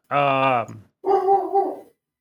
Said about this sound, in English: Yes, that's right, dog. I agree. That wasn't my dog.